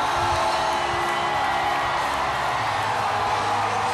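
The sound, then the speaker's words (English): A loud, dense roar of a cheering crowd at the World Series parade in downtown Houston, with whoops and shouts blending into a continuous wash of noise that holds steady throughout, as confetti falls and players ride atop ladder trucks. “Listen to the crowd.”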